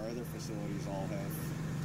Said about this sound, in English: Okay. Plus, listen to how high that idle is.